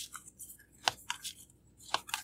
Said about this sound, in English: So let's pull your second card. So I'm going to shuffle the cards and let me know when to stop.